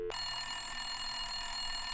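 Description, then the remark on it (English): A telephone rings continuously on a call put through by an operator, with a bright, shrill bell tone that holds steadily for the whole stretch, clear, with no voices over it. “It's ringing, it's ringing.”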